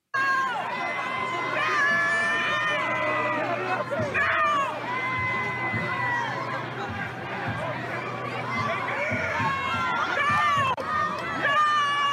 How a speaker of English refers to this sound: here are some of the protesters shouting F the police